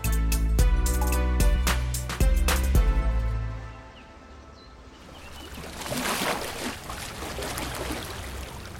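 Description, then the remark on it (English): Small waves on Lake Como, Italy, lap and splash against old granite steps leading down to the water on a calm day, preceded by a low rumble with a few sharp knocks, like a boat passing. No one speaks. “Small waves break on the old granite steps that lead to the water.”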